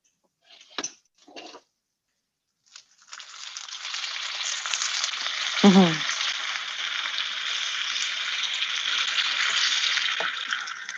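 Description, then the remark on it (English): A couple of soft knocks and clicks, then unsalted butter starts sizzling in a pan, a steady bright hiss that carries on to the end, with a brief louder clatter partway through. “And I'll let that sizzle for a second because I don't really want much more heat on it.”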